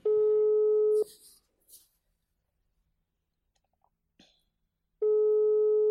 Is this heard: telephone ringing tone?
yes